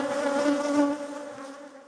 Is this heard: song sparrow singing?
no